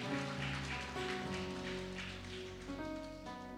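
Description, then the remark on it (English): A church audience claps for its guests in a steady, dense, continuous patter of many hands, with sustained musical tones like an organ or keyboard ringing beneath the applause throughout. “Come on and give them a hand clap one more time.”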